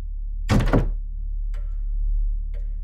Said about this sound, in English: We watch them shut the door behind them.